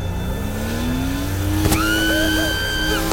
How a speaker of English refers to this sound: I slammed the stick into first, floored it, and dumped the clutch. The engine roared and the car lurched with engagement, striking the mass in front of me.